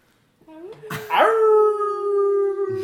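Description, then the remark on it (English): A person imitates a werewolf howl, a long sustained tonal cry that rises sharply then holds steady for over a second, loud, with a brief yip-like start. “howls”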